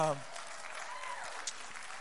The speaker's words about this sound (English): And so we want to let you know that what we're working on is that we are planning for a Bluffton campus that we will, in God willing, we will launch. You can clap. That's great.